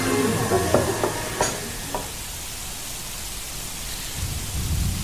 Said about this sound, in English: It was a dark and stormy night on the moors of Lowestoft.